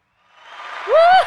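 A short round of applause swells from quiet to loud, a wash of clapping noise topped by a rising, whooping cheer near the end.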